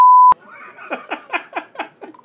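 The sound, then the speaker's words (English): A loud, steady single-pitch censor bleep covering a swear word lasts about a third of a second and cuts off with a click, followed by a run of rhythmic, breathy laughter bursts. “I'll bleep it.”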